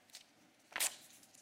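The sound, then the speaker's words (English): A single quick rip as the arm is torn off a little purple paper doll: a brief, crisp, hissy tearing burst lasting under a quarter second, fairly soft, with no voices. “I was gonna do this with an actual doll and like rip limbs off”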